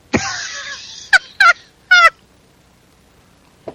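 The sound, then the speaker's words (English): An American seagull call alone: one long harsh cry followed by three short, loud squawks in quick succession and a faint final chirp after a pause. “course, it's an American seagull.”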